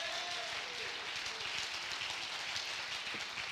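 A crowd claps steadily to thank God, the dense patter of many hands blending into a continuous wash of applause that holds at an even level without pause or speech.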